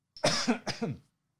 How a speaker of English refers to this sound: But, I'm going to cough.